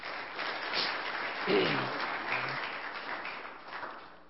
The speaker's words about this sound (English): So, another, again, I think a round of applause is necessary for that.